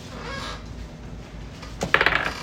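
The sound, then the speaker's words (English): Dice clatter briefly on a hard surface near the end, a quick cluster of sharp rattling clicks that settle within half a second, following a stretch of quiet room noise; the dice are rolled for a perception check and come up a natural 20. “Roll me a perception check.”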